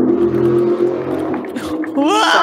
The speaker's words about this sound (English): Someone speeds by us on some kind of powerboat. Motorboat.